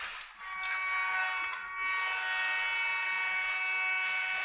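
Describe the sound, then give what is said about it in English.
A train passes outside, heard as a steady, high tonal whine layered over a wash of rushing noise that holds for several seconds, with no one talking. “I think there's a train outside.”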